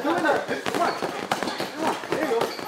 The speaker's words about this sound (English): As you walk into Rudy Moreno's backyard in Vista, you hear the sound of gloves striking punching bags.